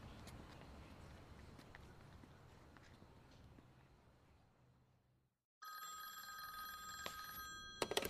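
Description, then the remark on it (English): After several seconds of muffled movement and footsteps, a brief silence gives way to a loud telephone bell ringing steadily through to the end. “Got a phone call to make.”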